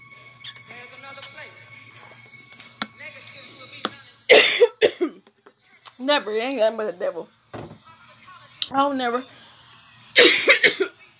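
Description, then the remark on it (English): A few harsh coughs and throat-clearing bursts break up a man's speech, with two louder coughing fits standing out between his spoken phrases. “And I just want to let you know, excuse me, I don't never cough during the day.”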